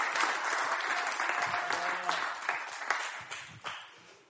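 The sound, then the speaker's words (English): A crowd applauds, giving God a hand clap of praise: dense overlapping hand claps forming a steady wash of sound that gradually thins and fades toward the end, with a few voices calling out underneath. “If you're with me, can you give God a hand clap of praise?”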